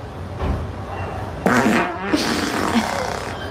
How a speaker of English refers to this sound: Hey, babe. Guess the sound of my fart. It's gonna be wet.